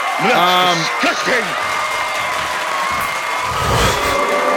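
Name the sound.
clapping applause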